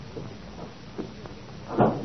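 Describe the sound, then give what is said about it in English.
A door swings shut with a soft, muffled thud near the end, after a couple of faint creaks and shuffles against a quiet room hush. “Would you mind the door?”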